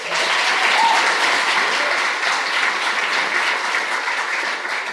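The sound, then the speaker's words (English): A live-show audience claps steadily for about five seconds, a dense, even wash of handclaps at a loud, constant level with no voices standing out. “Give our first Scrooge a round of applause,”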